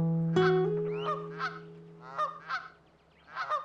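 Canada geese honk repeatedly in a loose, uneven series of nasal calls, clear, over a steady low hum in the background.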